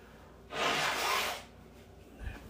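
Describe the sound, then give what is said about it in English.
A single forceful nose blow into a tissue by someone getting over COVID: a loud, breathy, hissing rush of air lasting about a second, then quiet with a soft low thump afterward. No one speaks. “I'm going to blow my nose.”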